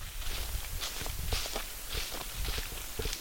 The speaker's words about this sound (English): We're standing in the wilderness near the Hickory Ridge Fire Tower, walking along the gravel path in the thick forest. We can hear the sound of leaves crunching beneath our feet.